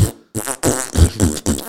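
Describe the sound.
A voice imitates a fart: several buzzy, sputtering bursts in quick succession, loud, with short gaps between them.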